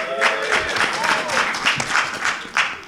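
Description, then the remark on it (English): An audience applauds with a steady wash of dense clapping, loud and continuous for a few seconds, with a few voices and whoops mixed into the noise. “That applause just makes me feel so good right here.”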